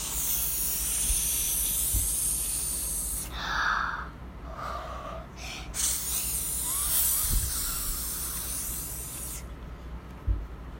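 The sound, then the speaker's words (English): A person makes a long, loud hissing sound with their mouth like a snake, the breathy hiss running almost without pause, with a couple of brief breaths in between. “… imitated the sound of a snake hissing.”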